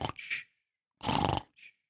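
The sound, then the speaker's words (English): A person fakes loud, exaggerated snoring, pretending to have fallen asleep: two rough, rasping snorts separated by a pause, then a shorter, softer snuffle to finish. “Yeah, I snored a little bit less than you.”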